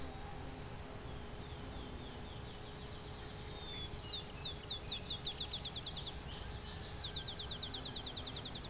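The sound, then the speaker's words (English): A sparrow sings a high, rapid trill of evenly spaced notes, pauses, then trills again, fairly faint against a steady outdoor hiss and low rumble. “So the sparrow is rather uncommon to this region.”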